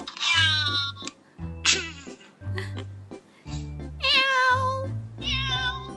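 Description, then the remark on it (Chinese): A person mimics a cat to greet someone's pet cat, letting out about six drawn-out, fairly loud meows in quick succession, with low droning tones running steadily underneath. “怎么打？ 就喵一下。”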